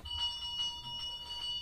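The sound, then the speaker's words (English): A bell rings repeatedly in a quick, steady rhythm, its bright metallic tone sustaining between strikes. Moderately loud, with no voices over it. “Father Christmas doesn't have to ring a bell.”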